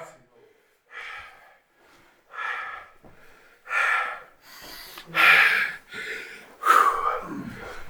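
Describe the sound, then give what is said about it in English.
A sneeze preceded by a string of sharp, breathy intakes and snorts that build in loudness, ending in louder bursts of air. “Bless you.”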